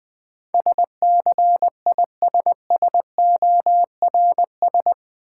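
Morse code at about 20 words per minute: a single steady mid-pitched tone keyed into quick dots and longer dashes, grouped into letters with short gaps, played alone without any talking.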